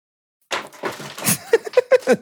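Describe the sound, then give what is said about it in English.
Objects clatter and knock together as someone rummages through a drawer, a run of short rattling bangs and scrapes, with a few sharper knocks near the end. “rummaging around in his drawer.”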